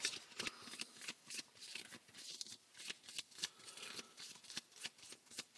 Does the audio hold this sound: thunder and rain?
no